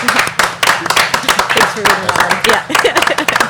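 An audience breaks into a round of applause, a dense, steady patter of many hands clapping at once with a few brief dips, lasting a few seconds.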